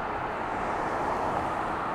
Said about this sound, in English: Small shops and restaurants of varying types line the busy street. Cars and buses stream by, but nearly as many pedestrians stroll down the sidewalk at a much slower pace.